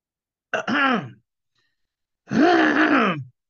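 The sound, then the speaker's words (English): Two loud throat-clearing sounds, a short gravelly one followed by a longer, groaning rasp after a brief pause, with no speech. “I'm just clearing my throat.”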